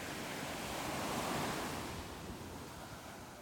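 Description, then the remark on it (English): Pacific Ocean surf washes onto a beach in Maui in a steady, broad roar that swells around the middle and then eases back, with a hint of wind and no voices. “And so right in the moment of those lyrics, you'll hear kind of the crashing wave of the ocean. And so this is a recording of the Pacific Ocean from a beach in Maui.”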